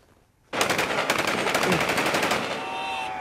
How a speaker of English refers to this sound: And with Wagner forces firing their guns into the sky and cheers from the watching public, his troops also departed the city.